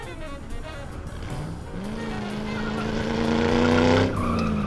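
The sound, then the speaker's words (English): A car engine revs hard and climbs in pitch as the vehicle accelerates to chase another car, with a loud, sustained tire squeal rising over it before easing off near the end. “Speed up, we'll catch him!”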